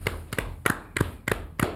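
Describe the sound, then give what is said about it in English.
A slow clap: about six sharp hand claps at a steady, even pace, each a crisp bright smack with a short ring-off, and no voices. “Can we do a slow clap for that?”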